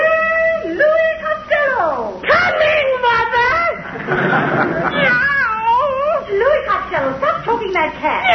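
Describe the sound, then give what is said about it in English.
A voice imitates a distressed cat, producing a loud run of strained, wavering meows and wails that rise and fall almost without pause for several seconds. “Meow, meow, meow. I'm not choking it, Ma.”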